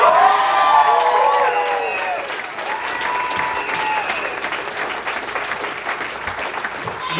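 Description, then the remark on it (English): An audience breaks into loud, sustained applause with scattered whoops and cheers at the start, the clapping continuing as a dense, steady patter that eases slightly toward the end. “Absolutely clap, because gay relationships are like dog years.”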